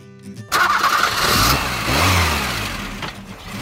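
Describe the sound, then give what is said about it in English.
A tractor's diesel engine cranks and catches about half a second in, then rumbles up into a loud, steady running idle with some revving, with no one talking. “And remember now, that's the correct engine for my favourite tractor.”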